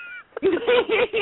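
A cat meows several times in quick succession, fairly loud, each cry a drawn-out, wavering tone with a short high chirp at the start.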